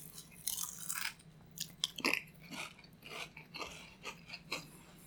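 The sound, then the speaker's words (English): Repeated crisp crunches of someone chewing pizza-flavored Pringles potato chips, a steady series of sharp, bright bites and mastication sounds, with no talking. “I don't like the crunching sound in front of the mic either.”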